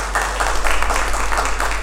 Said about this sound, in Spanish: Gracias, varón. Un aplauso al hombre del agua.